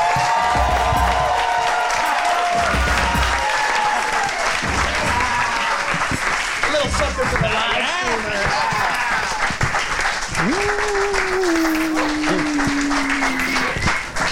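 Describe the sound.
A crowd applauds loudly and steadily as John Gabris is introduced, with whoops and cheers rising over the dense clapping. Sustained shouted voices ride on top of the noise throughout.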